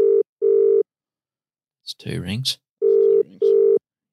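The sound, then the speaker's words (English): An outgoing phone call's ringback tone, calling a guest, sounds twice, each time as a quick double burst of steady buzzing tone, fairly loud and clear. A man talks briefly in the pause between them. “It's two rings.”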